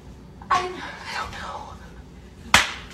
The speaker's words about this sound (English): Wow, she slapped him pretty good.